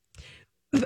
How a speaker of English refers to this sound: But now you need a really good cough. Get it out. You okay? I'm sorry. I'm good now. Take a drink.